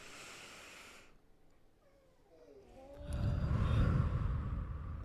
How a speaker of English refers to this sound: All of our cats growled at the same while we took that deep breath, you know.